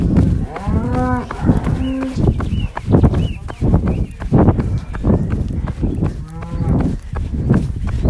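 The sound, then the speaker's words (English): Several cows moo repeatedly in the countryside on a warm day, long harmonic calls overlapping at around one, two and six seconds, over a steady outdoor background with faint birdsong and occasional clopping. “Nice sounds of countryside there. All the cows and the birds.”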